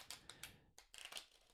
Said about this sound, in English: So just take a moment and you'll connect to the cards by listening into the sound of them being shuffled.